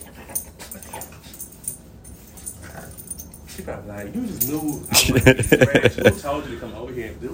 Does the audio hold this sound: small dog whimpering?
yes